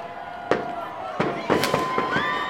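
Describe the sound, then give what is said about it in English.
A string of daylight fireworks set off to kick off a town Mayor's Day parade: five or so sharp cracks in quick, irregular succession, mixed with thin whistling streaks, over a faint outdoor murmur. “Bold choice by the mayor to do daylight fireworks.”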